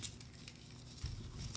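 Soft, continuous crinkling and rustling as a piece of paper is pulled out and unfolded in front of a microphone, with a brief dull thump partway through and no voices.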